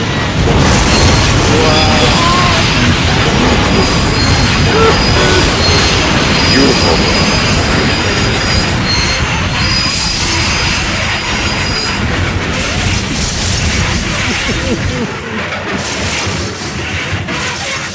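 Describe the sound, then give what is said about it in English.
A loud subway train crash: the train roars and rumbles, its wheels letting out sustained high-pitched metallic squeals, with heavy crashing impacts mixed into the continuous din before it eases slightly near the end. “He got killed in a subway crash.”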